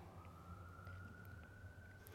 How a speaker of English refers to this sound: I feel these days, especially when an ambulance passes, we have to take a moment to wish them well.